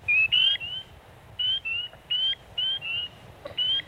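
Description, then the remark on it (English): Spring peeper frogs call in a steady series of high, piercing peeps, about seven short notes with brief gaps, loud over a low background hum, with no talking. “And then spring peepers are another, and they're adaptable when it comes to their habitat, but they prefer to reside in ponds. You may recognize the sounds of their call.”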